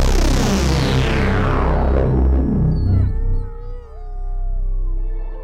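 A dog howls in long, wavering drawn-out tones, loud, with a sliding pitch that rises and falls before fading into a softer trailing whine.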